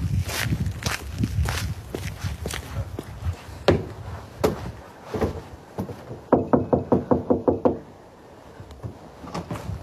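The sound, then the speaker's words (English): Footsteps thud along at a steady pace as a journalist arrives at a house, then a quick burst of about eight sharp knocks rings out on its wooden front door before things go quiet. “Yeah, Jessica's husband answered the door.”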